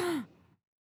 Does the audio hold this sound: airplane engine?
no